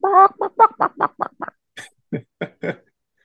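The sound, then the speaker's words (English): A voice imitates a chicken clucking, a quick run of about a dozen short, choppy bursts with a brief squawk midway, fairly loud. “Coward chicken.”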